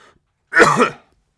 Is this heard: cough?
yes